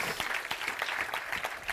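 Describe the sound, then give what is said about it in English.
An audience claps steadily, many overlapping hand claps forming a dense, continuous patter of applause with no voices clearly standing out. “I'm waiting while you clap your hands and say amen.”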